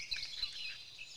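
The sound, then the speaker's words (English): A quiet lakeside ambience with a steady airy wash and faint, scattered bird chirps twittering; no one speaks. “Let's change up the sound. This is a lakeside repose.”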